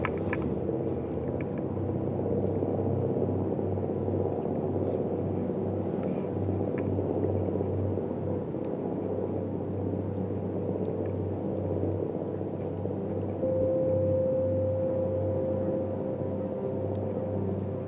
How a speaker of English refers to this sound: Maybe you could just kind of dig the fluttering sound of the chopper. That's not bad. Listen to it. Its tone is improving. You hear that? Kind of got a fluttering thing going now.